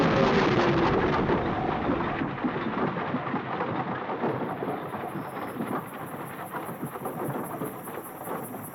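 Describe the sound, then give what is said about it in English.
A violent, fast-arriving thunderstorm with tornado winds roars, a dense, continuous rush of wind and pounding rain with deep rumbling underneath, loud and steady throughout, easing only slightly toward the end. No voices. “That storm came up fast. Everybody, hang on. I think it's a twister.”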